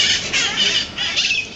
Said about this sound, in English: In the sky is this swirl of squawking color. A huge flock of parrots. They've got these green bodies and bright red heads.